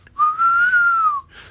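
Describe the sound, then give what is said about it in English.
A person whistles an imitation of an owl's hoot: one smooth, steady mid-pitched note lasting about a second, rising slightly and then falling away at the end, with no talking. “They go like kind of make that noise, don't they?”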